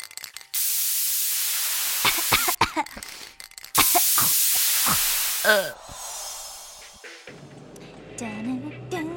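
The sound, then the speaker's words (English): Two long, loud bursts of red aerosol spray paint from a dollar-store can hiss as a pair of white pumps is painted, with short vocal sounds between them. Murmured voices and background sound follow at the end. “A $30 pair of white pumps from Shoes for Less and a can of red spray paint from the dollar store”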